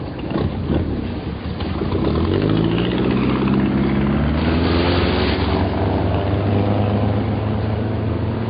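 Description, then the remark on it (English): An aircraft propeller engine starts and revs up, its droning pitch climbing over a couple of seconds, then holds a loud, steady roar. Nobody speaks. “You're standing against my propeller.”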